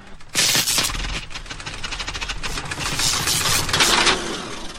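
A refrigerator motor sputters and strains as it dies, a Foley sound effect: a loud, rough rattling with rapid popping bursts that churn unevenly for several seconds, with no voices.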